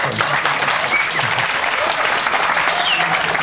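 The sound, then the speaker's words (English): Steady applause from an audience, a dense wash of many hands clapping at an even, sustained loudness for the whole stretch, with no voices standing out. “You and your applause lines.”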